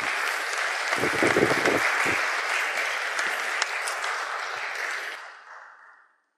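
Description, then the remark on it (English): A crowd gives two volunteers a round of applause as they come forward, clapping steadily in a dense, continuous wash with a few louder bursts early on, before it thins and fades out over the last second or so. “So please give our two volunteers a warm round of applause as they come forward.”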